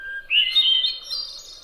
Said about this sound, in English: But also accounts for the descending, echoey cascade of overlapping flute-like notes of the hermit thrush.